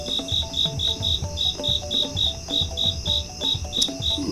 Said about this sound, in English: Two crickets in a row.